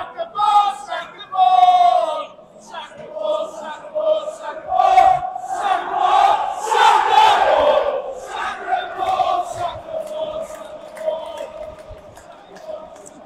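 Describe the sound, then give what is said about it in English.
Everton fans chant 'sack the board' in protest after a 2–1 home defeat to Southampton, a loud rhythmic mass of voices rising and falling in repeated shouted phrases, with scattered yells and whistles over a continuous roar. “And the sack the board shouts.”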